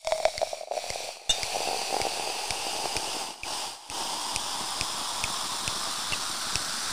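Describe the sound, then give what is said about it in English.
Sparkling wine is poured into glasses, a steady fizzing hiss full of tiny crackling pops that runs for several seconds with a couple of brief pauses, and no one speaks. “And I'm going to pour us some nice naughty now. I'm going to pour us some naughty.”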